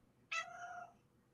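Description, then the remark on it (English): A single meow from a cat named River, sudden and fairly loud, starting bright and sliding down into a drawn-out tone that fades over about half a second. No one speaks. “Do you hear River agree with you?”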